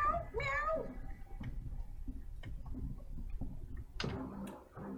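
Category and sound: animal, cat meowing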